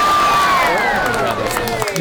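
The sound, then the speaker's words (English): A loud crowd cheers and whoops steadily for about two seconds, played turned way up from a streaming channel, with high shouts and pitched yells rising and falling over a dense roar of voices. “Oh, and the crowd just got here.”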